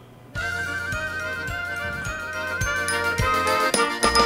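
A polka band launches into a brand new song with bright, ringing bells over steady sustained chords, while a bouncy bass beat thumps along at an even, quick pace. Loud, with no voices.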